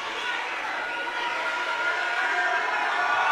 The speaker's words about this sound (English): Crowd is loud.